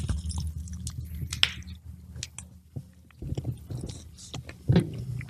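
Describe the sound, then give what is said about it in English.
Wet chewing and biting of a hot chicken wing, with squishy, smacking mouth sounds repeating irregularly over a few seconds, plus a couple of sharper crunchy bites; no talking. “I have to go grab one out of the fridge, but we'll wait until after this wing.”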